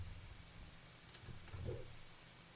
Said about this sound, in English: This is what I'm trying to work out. Where is that hiss coming from?